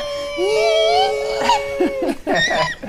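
A dog howls in a long, sustained, slightly rising tone lasting about a second, then breaks into shorter, choppier wavering cries.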